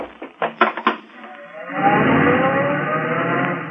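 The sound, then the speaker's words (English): A few sharp knocks, then a car engine roars up and accelerates hard, its loud, rising drone holding steady as the car speeds off, taking a corner on a couple of wheels. “Car took the corner on a couple of wheels.”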